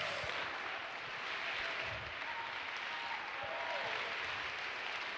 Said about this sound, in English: Oh, clap your hands and rejoice to God.